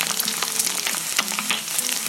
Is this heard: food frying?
yes